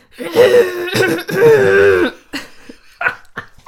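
A voice imitates a stifled, suppressed cough: two strained, voiced bursts held back in the throat, followed by a few short, choppy exhalations. Close and fairly loud, with no other sounds around it.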